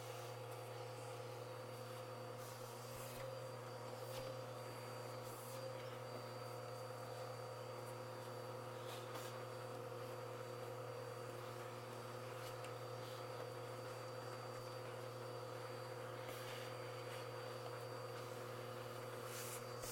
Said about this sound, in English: So all I'm gonna have to do is brush the dust out and it should be working as normal again. You got something I can use to clean it? Well, a vacuum would do fine, like a hand vacuum if you got one.